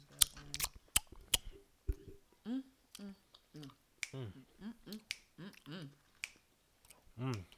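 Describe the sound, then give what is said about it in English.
Loud chewing of candy: sharp, wet smacking clicks come in an irregular burst early on, mixed with muffled hums and murmured voice sounds, with a few more smacks scattered through. “I got like chew this and like digest it. Mm. I know I'm smacking in their ear.”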